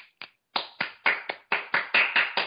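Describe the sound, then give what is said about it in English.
Around ten sharp hand claps at the heart in a fairly steady rhythm, the first two quicker and lighter, then firmer claps at a moderate pace, with no voices. “You're clapping at your heart now.”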